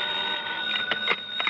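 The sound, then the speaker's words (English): An old-fashioned telephone beside a bed jangles steadily and fairly loudly, its metallic ring sustained through the whole moment with a few sharper clattering bursts, and no one speaking. “I'd no sooner rolled over in the hope of getting back to sleep when the phone beside my bed started jangling again.”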